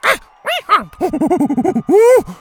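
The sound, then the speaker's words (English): A monkey, Tuku, howls angrily after his hand is swatted away as he tries to steal a hat: a few sharp cries, then a rapid run of chattering hoots, ending in one long, loud wail. No one speaks. “Bo swatted his hand away and the monkey howled angrily.”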